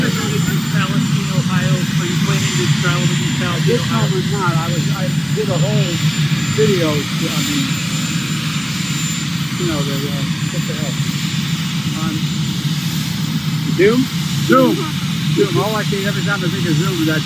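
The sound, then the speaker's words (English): A helicopter engine runs loudly and steadily throughout, a constant roar, with voices talking over the noise as a man about to board the helicopter speaks. “Well, his answer, as he gets off, as he's about to enter a helicopter, probably for another vacation, here's what he had to say.”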